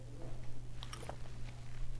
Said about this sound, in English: because I'm kind of tired of talking and I want to take a sip of water.